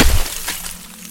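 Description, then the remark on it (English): An ice sculpture topples forward with a heavy crash and a low thud at the start, followed by a bright, brittle shattering as pieces of ice scatter around the room and tinkle briefly before fading out. “You watch as the ice sculpture crashes forward.”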